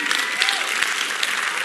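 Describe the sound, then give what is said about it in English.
A crowd claps together in a dense, steady patter of many hands, fairly loud and continuous, with no single voice standing out. “You better clap your hands.”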